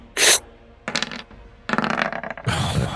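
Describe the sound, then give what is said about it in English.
Dice clatter and tumble across a hard tabletop in several quick bursts, a sharp loud rattle first, then repeated rolling clicks and skitters with brief pauses between; the roll comes up a 10. “Doesn't matter because you've rolled a 10 on the dice.”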